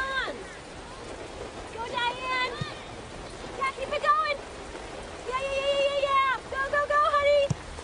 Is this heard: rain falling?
yes